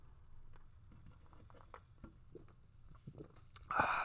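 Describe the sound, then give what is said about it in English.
Someone gulps a drink, a handful of soft, wet swallowing sounds spaced irregularly over a low, quiet background, ending in a sudden louder breathy burst at the very end. No one talks. “Your gulps. Gulp. Gulp.”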